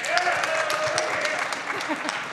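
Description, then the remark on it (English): A crowd claps steadily, a dense wash of many hands applauding together, with a few faint voices murmuring underneath; audience members who have played the video game Mad World are applauding. “Who's played Mad World? Round of applause.”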